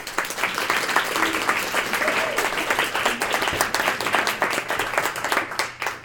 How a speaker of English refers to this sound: So let's give a round of applause for our panelists.